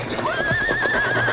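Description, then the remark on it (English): A frightened horse whinnies in a long, shrill, wavering cry, with hooves clip-clopping underneath and the agitated stamping of several scared horses being led. “Better lead the horses. Pretty scared.”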